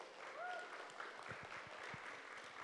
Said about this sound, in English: All right, it was an immense pleasure. I get to invite my mother up on Mother's Day. So, why don't we give her a round of applause?